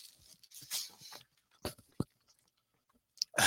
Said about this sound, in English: Okay, that's it. Last bite. Okay. Yes. Swallow. No. Bite, chew, choke, swallow. Try to avoid that third step, though.